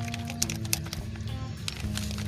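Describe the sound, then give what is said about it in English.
A bottle of 7-Eleven lemon tea being shaken, with a few soft, irregular sloshing swishes over a steady low electrical hum. No one speaks. “Give it a good shake.”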